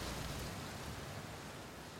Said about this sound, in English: Tonight, a nasty storm has rolled onto the coast. I can't remember the last time the weather was this violent. The lighthouse is sturdy, but the wind and rain is putting the old relic to the test.